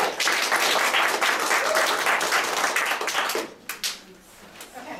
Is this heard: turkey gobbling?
no